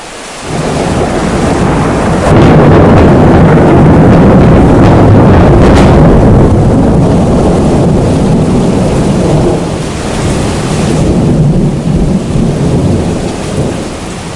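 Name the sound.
thunder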